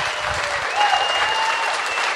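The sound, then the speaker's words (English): A crowd applauds steadily and fairly loudly, a dense wash of many hands clapping together with no pauses, filling the whole moment without any speech over it. “Weren't you clapping, sir?”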